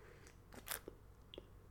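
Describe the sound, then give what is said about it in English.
A short, airy slurp of coffee from a cup, followed by a couple of soft clicks like a swallow or the cup being set down. Quiet, with no talking. “Quick sip of coffee.”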